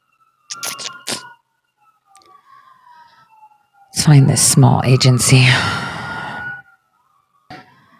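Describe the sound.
Many police sirens wail faintly outside an apartment building, stopping right outside it, a steady rising and falling tone running beneath a man's voice as he talks intermittently.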